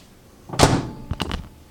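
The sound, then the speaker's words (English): A microwave oven door shuts with one solid, muffled thunk after rice is put in to cook for 3.5 minutes. About half a second later comes a short cluster of sharp clicks. No one speaks. “Now let's put it in the microwave for 3.5 minutes, and definitely be a time saver.”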